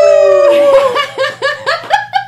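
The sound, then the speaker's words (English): A person gives a loud imitation of a howl: a long, slightly falling tone that breaks into a rapid series of rhythmic, yelping pulses. “Can we get a howl? One last time.”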